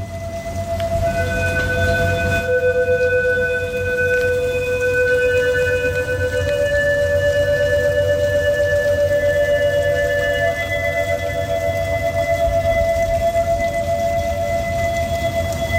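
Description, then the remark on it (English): Long, steady high-tide warning siren tones, issued for tides over one meter, sound in sustained, shifting pitched layers over a constant wash of rain during an uncommonly high tide with high winds, the sirens rising and stepping between notes across the whole stretch. “perhaps you'll lay a little bit of the sirens over this”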